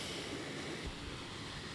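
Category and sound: nature, ocean waves and wind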